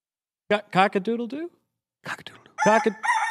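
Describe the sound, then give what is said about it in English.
A rooster crows loudly, a drawn-out cock-a-doodle-doo that breaks off briefly, then resumes with a bright, sustained final note, played as a sound cue. “Maybe episode 1000 we'll get the rooster cue on time.”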